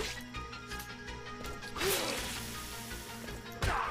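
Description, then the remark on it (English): Two sharp video-game punch impacts, one around the middle and another near the end, as an enemy punches the player's character, over a steady bed of game music and background noise. “Ow, that guy punched me.”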